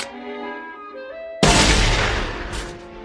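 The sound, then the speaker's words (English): A voice imitates a little cannon firing: a short hummed buildup, then one sudden loud, breathy boom that rumbles and slowly fades. “Can you make a little cannon? Yeah, I think so.”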